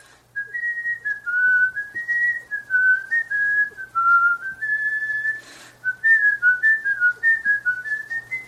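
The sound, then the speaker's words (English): A person whistles a wandering, tuneful melody, held steady for several seconds with only a brief pause midway and a faint low hum underneath. “I guess literally this whistling is more entertaining.”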